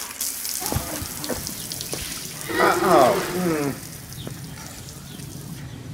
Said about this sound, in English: This is my water gun. It's not hooked up to a hose, though, buddy. You gotta hook it up to it.